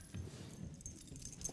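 A quiet jingle of keys being shaken, a brief metallic rattling with a few bright clinks, heard alone without any voices.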